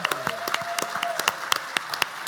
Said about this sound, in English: Round of applause for the man.